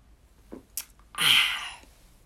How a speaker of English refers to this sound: Let me take another sip of my green tea.